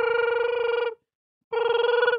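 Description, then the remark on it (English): A telephone rings twice in a classic warbling trill, each ring lasting about a second with a short pause between, loud with no voices. “Yeah, you're about to get a phone call.”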